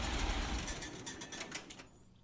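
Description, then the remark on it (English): A tractor engine rumbles steadily with a rattling, mechanical chatter, then cuts off and winds down, leaving near silence. It sounds fairly quiet, with no voices. “The only hitch was that they didn't include the tractor turning on and off, but I was able to find close enough sounds”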